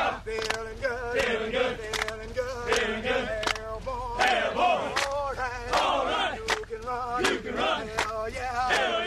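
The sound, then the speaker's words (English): A group of voices chants an Airborne military running cadence in loud unison, the sung lines rising and falling over a steady, regular thump of sharp beats like marching footfalls. “Let's play a little bit of the Airborne running cadence.”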